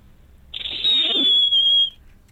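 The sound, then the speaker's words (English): A person whistles a single loud, piercing high note that slides slowly downward for about a second and a half, imitating a firework, with no talking. “I can whistle like a firework.”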